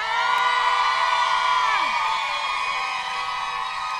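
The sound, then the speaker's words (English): A live show audience screams and cheers together on cue for a video, in one loud, sustained roar of shrieks and whoops that holds steady for several seconds. “Everyone scream.”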